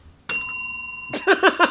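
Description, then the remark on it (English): A single bright bell strike rings out loudly and sustains its clear metallic tone for nearly a second before a voice cuts in over the fading ring. “I'm going to give him a bell.”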